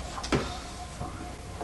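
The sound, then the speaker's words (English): A door at the top of a set of stairs being opened, heard as a few short wooden clunks and creaks spaced out over a second or so against a low, steady background hum. “Open door.”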